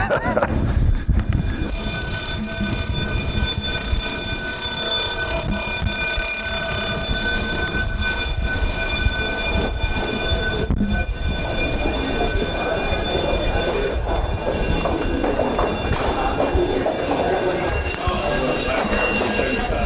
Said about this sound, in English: Well, by way of a flourish here, just as we're coming to the end of the interview, the fire alarms have gone off here at Guildhall, so we will complete in grand fashion on the sidewalk outside the building.